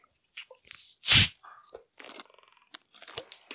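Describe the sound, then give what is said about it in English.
A glass cola bottle is opened with a sudden loud hissing burst of fizz lasting a fraction of a second, followed by faint, scattered crackles and soft bubbling sounds. “I'm not favoring one side, but I always love to open the bottle. So I'm really keen to hear the fizz.”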